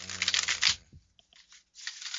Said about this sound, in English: Right here, I'm going to do this like bridge shuffle where the cards are really big.